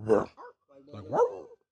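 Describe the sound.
A person's voice imitates a squirrel barking with two harsh, bark-like calls, a short clipped one followed by a longer rising one, fairly loud.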